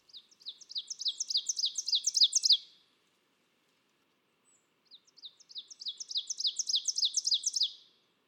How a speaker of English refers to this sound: Yeah, and the really cool song that, you know, sounds like just repeated teacher, teacher, teacher throughout the woods. Really, really distinctive.